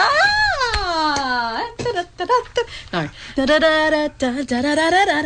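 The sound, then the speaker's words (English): A voice sings a wavering, snake-charmer-style melody in imitation of belly dancing music: a long sliding note, then quick choppy syllables and nasal, ornamented tones, loud and alone. “Sorry, I was doing like belly dancing music, you know, when the snake comes out and anyway.”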